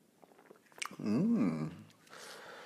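sipping hot coffee

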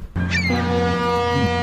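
foghorn

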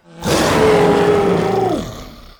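dinosaur roar

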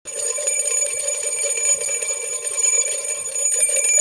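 bell ringing twice

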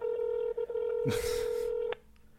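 telephone dialing tones

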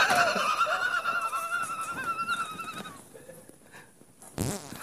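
fart sound effect

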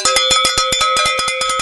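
cowbell ringing

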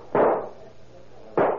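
gunshots

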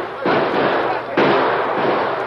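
gunshots

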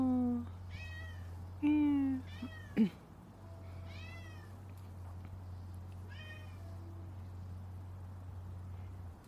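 cat meowing

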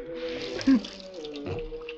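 water splashing

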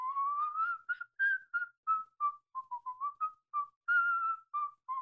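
human whistling

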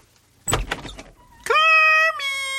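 door opening

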